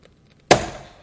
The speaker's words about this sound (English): We're going to smash watermelons in front of you, so you better duck and cover.